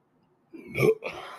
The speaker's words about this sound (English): That was a weird burp. It sounded like a cannonball or something. Kind of aggressive. It felt kind of assaulting. I didn't like it coming out. I don't know that I liked hearing it.